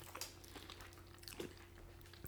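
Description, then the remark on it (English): Chewing a lemon-filled donut, layered like a croissant, right against a microphone, with soft, wet, squishy bites and a few crunchy clicks scattered irregularly, fairly quiet with a steady low hum underneath and no talking. “All right, here comes the portion of the show where we chew into a microphone.”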